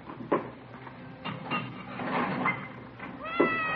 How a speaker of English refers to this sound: It's a nice cat you got there. Siamese? A little bit, yeah. It's my wife's.